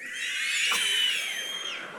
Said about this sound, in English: So I want to know how many of you can whistle at will really loud. Just wave your hand. Look at that. I want to count to three, and I want to hear it. I'm serious. I want to hear the loudest whistle you can give. One, two, three.